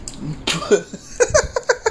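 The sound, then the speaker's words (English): A single forceful cough bursts out, followed by a short series of throaty, rhythmic hacking sounds, with no speech. “Yeah, you know you're talking and you cough up some cold.”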